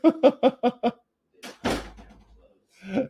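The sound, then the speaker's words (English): A door of a one-star hotel room, one that does not close right, is pushed shut with a dull thud and a brief rattle. It follows a few quick, rhythmic voice bursts like laughter, and a voice sounds again just after. “Are you close that door?”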